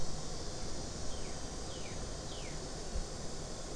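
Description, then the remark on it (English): Cicadas drone in a steady, high-pitched buzz that never lets up, fairly faint, with a few soft descending whines drifting through and no voices. “Is that cicadas singing?”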